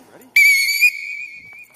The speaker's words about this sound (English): All right, here we go. On my whistle. Ready?